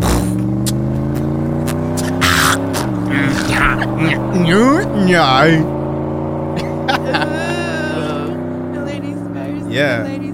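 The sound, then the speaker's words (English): A voice imitates a car engine starting and revving: a loud, buzzing drone that holds steady, then climbs and dips in pitch sweeps for about ten seconds. “Let's go ahead and get the car started.”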